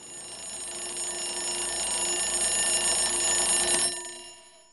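A shrill alarm clock bell on a bedside table in a cheap hotel in Cornwall rings continuously and loudly for about four seconds, waking a man, a bright metallic clatter with steady high tones, then stops abruptly and leaves a brief fading ring.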